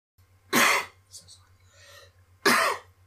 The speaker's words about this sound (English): You don't have to cough, apologize, and then cough, but you can just cough and it's fine.